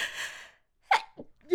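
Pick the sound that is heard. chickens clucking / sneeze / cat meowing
sneeze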